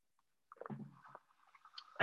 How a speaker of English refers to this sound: Sip of water real quick.